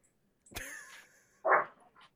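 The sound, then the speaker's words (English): A single short dog bark, fairly quiet, following a brief thump and a faint tonal whine, with no talking. “dog's in it too.”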